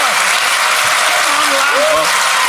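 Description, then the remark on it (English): A loud, steady round of audience applause, dense clapping that fills the whole stretch without a break, with faint voices or cheers rising briefly beneath it. “Let's give everyone a big round of applause.”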